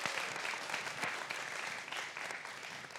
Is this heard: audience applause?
yes